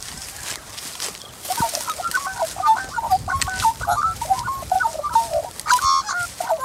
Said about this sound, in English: Ooh, do you know what bird is making that sound? It's black and white, and it's very common. And sometimes, if you get too close to its nest, it can swoop you. It's a magpie. They make lots of different sounds.